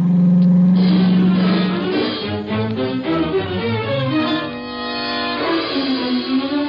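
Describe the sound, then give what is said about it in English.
A car engine runs as the car drives up to a farmhouse after dark, its pitch rising and falling as it revs and drives, loud and steady throughout with no voices. “We left my car around in back of the house and went up on the porch.”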